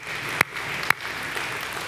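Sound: audience clapping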